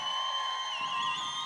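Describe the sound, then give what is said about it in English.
A theater audience at the Observatory applauds and cheers in a steady, dense wash of clapping, with high whistles and whoops ringing over it; the crowd noise stays even and moderately loud throughout. “This theater is beautiful. Give it a round of applause.”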